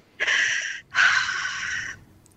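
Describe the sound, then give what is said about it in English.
Two quick, sharp breaths, a brief rushing intake followed by a slightly longer exhale, with no talking. “give us your best breath”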